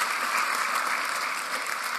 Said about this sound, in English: So guys, give her a round of applause.